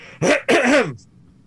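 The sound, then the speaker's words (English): Two loud coughs in quick succession, each a harsh voiced burst with a rough, throaty edge, followed by quiet room tone. “Cough, get a good one in.”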